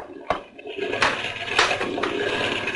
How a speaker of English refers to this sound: Even boat motors can't take it. They start to die. I don't understand it. She's been running like a dream.